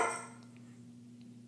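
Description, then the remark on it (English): A single short bark from Nola, a dog, at the very start, fading quickly into a steady low electrical hum with no one speaking. “Nola, lie down. She always has one last word.”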